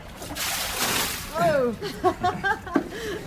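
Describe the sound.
A bucket of water is flung out in one loud splash during cleanup after a flood, washing across the first second, followed by voices talking.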